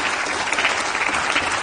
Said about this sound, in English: And basically, they just keep on clapping, clapping for a while. They clap for a very long time.